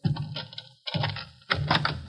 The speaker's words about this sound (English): Open the door